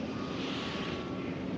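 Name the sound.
spaceship engines running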